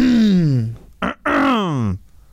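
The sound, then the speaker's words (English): A loud throat clearing by a man in two drawn-out, voiced, groan-like pushes with falling pitch, separated by a brief rough catch, with no talking. “That's his signature. Clearing the throat.”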